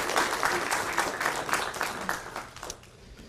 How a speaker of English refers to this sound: Thank you all for coming up. Should we clap for them? Let's clap.